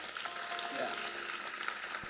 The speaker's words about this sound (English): The way you are clapping, it determines how you will be like.